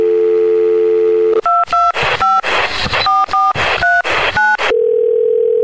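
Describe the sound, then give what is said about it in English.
A steady telephone dial tone hums, then a quick run of about ten keypad tones beeps in irregular rhythm before the dial tone returns. Clear, with no voices. The call dials out to the Movie Zone phone line of the Larry H. Miller Megaplex Theaters. “All right, dial back out to the Movie Zone phone and talk about another one that's opening this week.”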